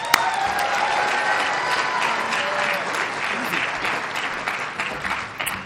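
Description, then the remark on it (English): Sustained applause from an audience welcoming a speaker being introduced, a dense steady clatter of many hands clapping at an even loudness for several seconds, with a faint whistle near the start. “So show a lot of love and give it up for”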